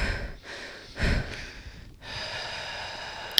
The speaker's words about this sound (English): I wonder if it's too loud, though. The static? No, the microphones. We are still fine-tuning our microphones. I don't know. So you can hear a lot of breathing.